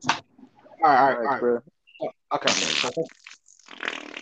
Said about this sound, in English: That was the wettest fucking fart I've ever heard. I don't care if that was fake, bro. That shit sounded like a shark, bro.